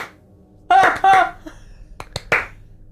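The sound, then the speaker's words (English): A slow clap: a few sharp claps land one after another in a measured group of three, preceded by brief voiced sounds from a person. “As a six-armed snake from the waist down woman does a slow clap on your entry, three claps clap, at clap, a time.”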